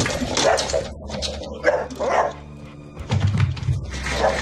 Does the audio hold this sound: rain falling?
no